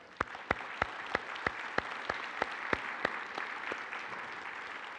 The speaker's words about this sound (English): And why don't we just show them our appreciation through a round of applause?